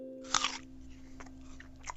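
A crisp bite into a Macintosh apple, followed by a couple of quieter crunching chews, with a faint steady hum in the background.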